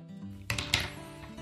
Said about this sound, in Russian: Я ж выронил ручку.